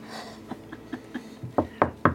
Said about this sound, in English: Knock on the statue.